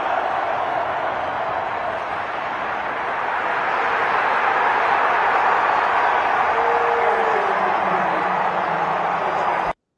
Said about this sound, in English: This is the first Jonesy touchdown, Aaron Jones' rushing touchdown. This is from the end zone cam, too. I love these shots. Let's check it out. Listen to that crowd at Lambeau Field South, man. One more time. Listen to the crowd.